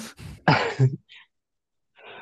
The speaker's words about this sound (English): say every time I drink this Sprite this Bowel Prep, every time I drink this Bowel Prep that I have next to me, it makes me cough up a little bit. It does.